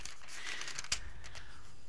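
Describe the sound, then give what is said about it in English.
The thin, skinny paper-like pages of a Bible being turned, a soft continuous rustle and crinkle with one sharper flick partway through, and no talking. “I tell you, this using a different Bible this morning, these skinny paper-like pages, I can't hardly get through here.”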